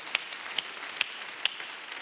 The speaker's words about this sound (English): Come on, let's clap to Jesus for his love.